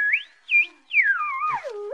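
A radio being tuned by McGee in the living room at 79 Wistful Vista in the show Fibber McGee and Molly: shrill, wavering whistles slide up and down in pitch over a faint steady tone, with short breaks, ending in a long downward glide to a low hum.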